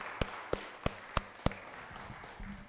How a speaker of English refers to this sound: Let's just give him praise. You can open your mouth. You can clap your hands, whatever. It's not for me. It's for the Lord.